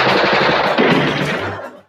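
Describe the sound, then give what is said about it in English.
A loud, rapid burst of machine-gun-style gunfire shoots out a light during a show's opening, after Scooter orders the light to be killed; it rattles continuously for almost two seconds, then cuts off abruptly. No one speaks. “No, but he orders it to be shot.”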